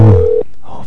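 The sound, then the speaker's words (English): A steady electronic ringback tone of an outgoing phone call sounds loudly over the line for under half a second, then cuts off into quiet line hiss. “I'm calling. If this works.”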